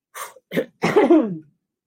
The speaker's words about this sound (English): Okay, so the first thing that I'm getting you for you is I had to clear my throat because I feel like you're clearing yours.